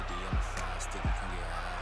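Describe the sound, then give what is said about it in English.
Two deep, dull thumps of a meerkat punching its fists against its small chest at a dried-up waterhole land about three-quarters of a second apart, fairly loud over a steady low background murmur. “the meerkat, smiles, punches his fists against his little tiny chest.”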